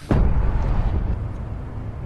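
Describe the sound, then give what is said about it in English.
A single loud cannon shot from The Hunger Games booms out with a sharp blast, then a deep, rumbling roar slowly rolls away and lingers to the end. No voices are heard. “Yeah, that was a cannon shot.”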